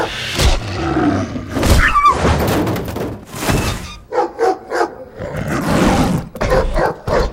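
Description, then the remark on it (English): A dog bear roars and barks in loud, rough bursts, with heavy thuds and a chaotic scuffle as it chases off an attacking wolf; the calls come in a rapid series of short growling barks toward the end. “It looks like that dog bear chased him off.”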